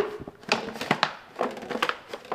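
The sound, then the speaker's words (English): A plastic gallon water bottle being crushed underfoot at a home in Miami to flatten it for a recycling bag: a burst of loud crackling and popping crunches, several sharp snaps spread irregularly over a couple of seconds, with no voices. “Let me step on that.”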